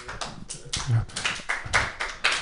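slow clap

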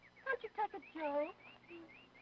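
bird chirping

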